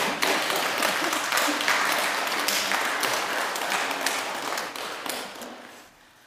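A crowd at a Buddhist Dharma talk applauds, many hands clapping in a dense, steady wash of sharp claps that holds loud for several seconds, then thins and fades out toward the end.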